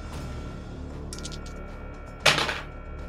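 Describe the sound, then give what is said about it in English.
Dice rolled for a sanity check clatter across a table: a few light, quick clicks, then a louder rattling burst that fades fast. It is fairly crisp, over a low steady hum, with no talking. “I should retire these dice. 72, which is a fail.”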